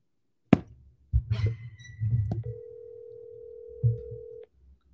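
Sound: outgoing phone call ringing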